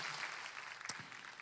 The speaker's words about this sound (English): Will you let Pastor Jay know just by clapping for him today?